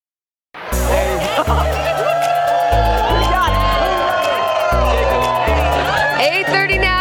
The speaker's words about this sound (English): What a great crowd out here. Beautiful fall morning.